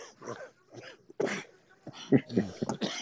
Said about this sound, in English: Yeah, there's that cough. You knew it. Yeah. The cold jumped out.